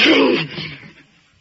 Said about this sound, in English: What's the matter? I'm gonna sneeze.